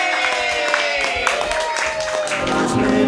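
A crowd applauds loudly and steadily for about three seconds for the next comedian at a comedy show, a dense wash of clapping with scattered cheers and some tonal background sound underneath.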